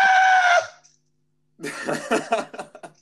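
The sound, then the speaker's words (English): A loud, strained vocal cry as a person yawns and stretches at once, turning into a shout, held briefly and fading, followed by a pause and then choppy, breathy vocal bursts. “Whenever it's like I yawn, flat out screaming.”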